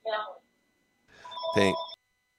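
A participant's phone rings during an online meeting in two short electronic bursts, the second longer with bright sustained tones over a muffled background, heard at moderate volume as if through a call line.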